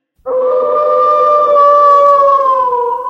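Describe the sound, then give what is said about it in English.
The original Howling Wolf sound effect from Disney's Haunted Mansion: a single loud wolf howl rises in and holds a long, steady, slightly wavering tone for about three seconds, with no talking around it. “The wolf shows up many times during the 7-minute and 12-second song, including right at the start.”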